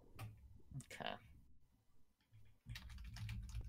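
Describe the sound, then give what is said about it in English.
A person types questions into a notepad on a computer during a guessing game. The rapid typing is a dense run of sharp keyboard clicks that pauses briefly midway and then resumes, with voices talking faintly underneath. “He's typing over there, which probably means he's cheating.”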